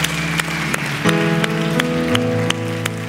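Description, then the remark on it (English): A church audience applauds about ten people who raised their hands, in a steady, dense wash of clapping that holds for a few seconds, with sustained musical tones and regular beats playing underneath. “Can we give these 10 or so individuals that raise their hand a huge round of applause?”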